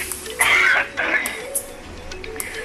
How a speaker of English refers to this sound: This emphysema cough, I swear to God.